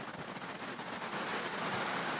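rain falling

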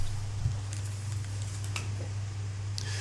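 rain falling outside

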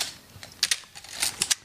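camera shutter clicking repeatedly

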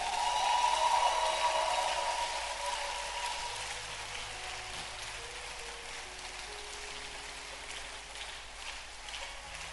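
audience clapping hands

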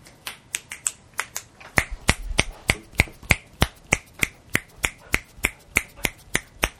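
finger snapping

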